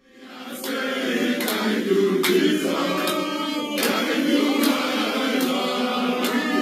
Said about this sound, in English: A crowd in Nigeria welcomes a former state governor after he has served a jail term in Britain.